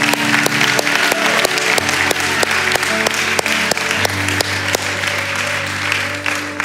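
An audience claps steadily in celebration, a dense, continuous wash of applause with sharp individual claps, while a low sustained keyboard tone hums underneath.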